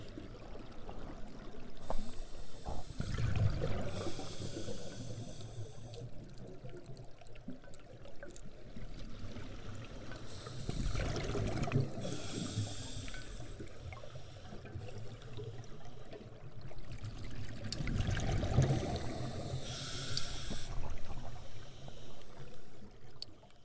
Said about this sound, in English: This was a recording of scuba divers breathing in an underground river called a cenote. Could you distinguish the exhales from the inhales?